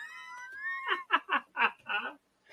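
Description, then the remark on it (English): A thin, drawn-out meow from a cat in a tree rises slightly in pitch, then gives way to four or five rhythmic bursts of laughter-like voice, moderately loud. “There's a fucking cat in a tree.”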